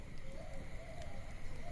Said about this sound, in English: He heard nothing but the screeching, honking, and gargling of the forest-dwelling alien lifeforms around them.